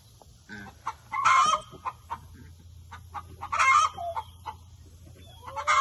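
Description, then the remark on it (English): Repeated clucking and squawking calls from a small injured chicken with a hurt eye, coming in irregular bursts with a couple of louder, agitated outbursts over a low steady hum. “We have this pathetic little chicken here that hurt his eye.”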